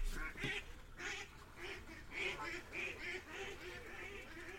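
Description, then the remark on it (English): Ducks fight and squabble noisily, a rapid, overlapping burst of harsh quacks that keeps going for several seconds, loud, with agitated calls piling on top of each other. “Ducks having a fight.”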